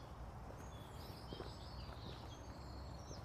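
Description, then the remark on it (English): Birds chirp and twitter in thin, high calls over a steady low outdoor rumble, with a few soft footstep-like thuds, as a person walks slowly away from a main road. No one speaks. “You can hear the birds.”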